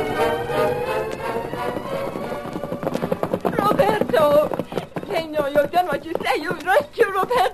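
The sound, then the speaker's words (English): Two horses gallop with fast, steady hoofbeats pounding underneath a busy swell of dramatic music, while voices call out over the din. “I never saw two men or two horses go so fast.”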